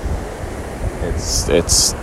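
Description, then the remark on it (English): Steady rush of ocean surf at an uncrowded beach, mixed with gusty wind rumbling against the microphone, constant, with two brief bright hissing bursts toward the end. “I can sit here, take in deep breath, and take in this ocean air.”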